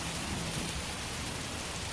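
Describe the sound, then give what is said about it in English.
Steady, soft rain patters continuously, a light drizzle hissing evenly across surfaces with no voices and no breaks, moderately quiet throughout. “Well, it's not that bad, just a drizzle.”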